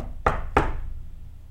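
knocking three times

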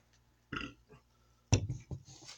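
burp

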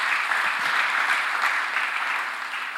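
audience clapping hands

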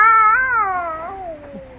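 cat caterwauling

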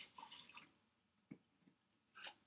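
liquid being poured

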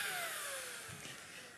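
vacuum cleaner running

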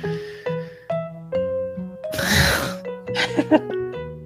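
throat clearing

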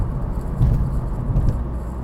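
car driving through traffic

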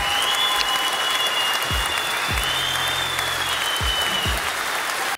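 applause

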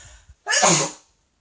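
sneeze

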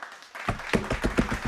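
hands clapping in applause

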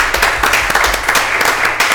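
applause

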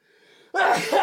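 sneeze

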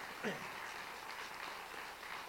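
audience applauding

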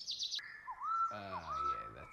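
bird calling

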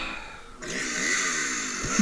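chainsaw sound effect

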